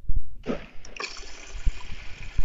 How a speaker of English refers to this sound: And that water sound that you hear is coming from his fountain that is 24 karat gold, where a little Cupid pees into your cup.